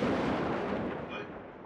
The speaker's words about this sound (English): Thunder. Oh. Whoa, what? Oh, apparently there's an extremely localized thunderstorm in this apartment. Like, I didn't know when you fight someone, you make thunder sounds.